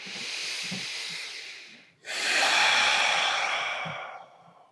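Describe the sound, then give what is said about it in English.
During a breathing exercise, a quieter breath drawn in through the nose is followed by a long, forceful breathy exhale that rushes out loudly as a hoarse, roar-like hiss, released as a 'lion roar' breath. No talking. “And then let it go with a big lion roar audible sound.”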